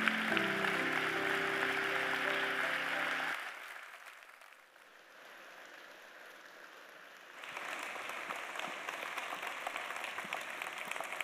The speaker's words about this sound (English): Why don't we just stand in honor of our pastor, and why don't we give Jesus Christ the greatest hand clap of the day for the gift of God that is in our pastor.